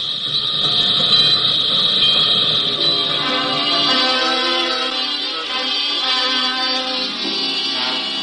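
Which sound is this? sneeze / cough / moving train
moving train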